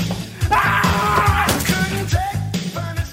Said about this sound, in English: And it's just that scream right there and the quick just going from talking about the song to, hey, check out my axe.